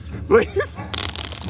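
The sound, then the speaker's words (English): A short voiced sound gives way to a quick run of hard, rattling clicks as dice are rolled, tumbling and clattering for about half a second, during a game. “I'm going to have you roll forceful, and we'll add 5 to that.”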